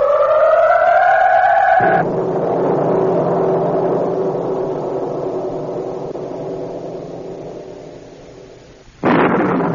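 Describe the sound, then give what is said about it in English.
A car engine drones steadily along an unfamiliar highway at night for a couple of seconds before a loud, rumbling crash of thunder from a lightning strike very near the car takes over, fading gradually until a sudden sharp burst at the end. “Lightning strike so close to the car, the unfamiliar highway, black of night.”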